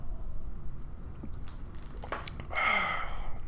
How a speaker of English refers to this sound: Oh, yeah, that was the last swig of that. That was pretty good. Folks, I do recommend the White Walker by Johnny Walker. It's not bad.